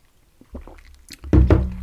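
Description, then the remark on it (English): Soft, wet swallowing sounds build into a few louder gulps of a Spanish coffee cream liqueur, similar to Baileys, served over a big scoop of ice in Tenerife, ending in a throaty, slightly voiced swallow. No one speaks. “Oh, I'm gulping that down, that's dangerous.”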